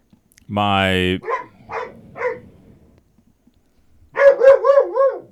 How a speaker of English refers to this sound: Our dog's gonna bark because the cat just, I heard him jump over the gate of the fence because he wants to go lick the barbecue grill.